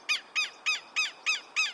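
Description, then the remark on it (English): A southern lapwing gives a piercing cackle: six sharp, high, harsh notes repeated in a quick, even rhythm, loud and alone with no voices. “Day and night, I often hear the piercing cackles of southern lapwings right from my home.”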